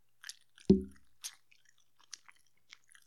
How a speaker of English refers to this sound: That's disgusting. I know. Nobody wants to hear the sloppy, fucking sloppy chewing.